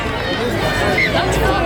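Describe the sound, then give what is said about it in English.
A large rugby league stadium crowd roars and shouts together in a sustained, loud wave of voices, a dense continuous din with no single voice standing out, appealing for a knock-on while the referee calls play on. “Crowd calling for a knock on there, but the referee said play on.”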